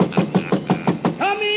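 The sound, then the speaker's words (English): A quick, even series of about six or seven knocks on Santa's door, followed at the very end by a voice starting to call out. “In a moment now you'll hear me knock on Santa's door.”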